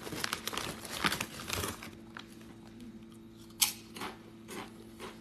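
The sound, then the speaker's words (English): Crinkling of a vegan junk food snack wrapper mixes with crunchy chewing as the food is eaten, dense at first, then thinning into scattered crackles and a few sharp crunches, with a steady low hum underneath and no talking. “Eating Vegan Junk food Live”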